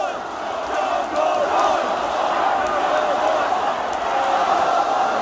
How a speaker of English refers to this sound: We had a live crowd. The first four rows were plants, but a lot of these voices are fans.